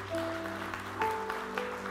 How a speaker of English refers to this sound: let's give him a round of applause as he comes up.